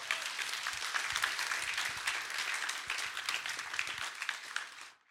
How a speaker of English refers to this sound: So clap a lot so they know you're happy.